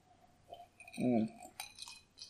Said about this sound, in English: You know what? I'm going to take another sip. This is pretty good.